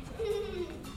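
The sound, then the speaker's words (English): A person imitates a giraffe with a single low, bleating vocal note, held for about half a second and gently falling in pitch, at moderate loudness. “But I looked it up, and it said a low bleating sound, kind of like a sheep.”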